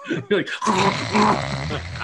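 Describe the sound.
A voice does a wet, gargling snore imitation: two short guttural bursts, then a longer rattling, throaty drone, fairly loud, lasting about two seconds.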